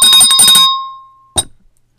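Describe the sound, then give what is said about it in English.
A hand bell is shaken rapidly for about half a second, then its tone rings out and fades, followed by one last sharp clang. Loud, with no voices. “Where's my bell? I'm gonna wake you up.”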